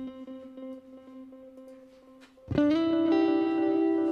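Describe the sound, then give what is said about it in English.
An electric guitar played through an oscillating echo effect pulses in quick repeating echoes, then a louder, brighter chord hits and swells into a dense, ringing wash of effected repeats that sustains to the end. No one speaks. “Now we're talking oscillating echoes.”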